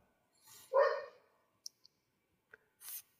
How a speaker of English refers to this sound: I was listening to the dog barking. I didn't know it was going.